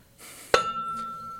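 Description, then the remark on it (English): A single sharp metallic clink from a Hydro Flask metal water bottle being struck, with bright ringing overtones that hang and fade over about a second, no voices. “Yeah, that was my Hydro Flask.”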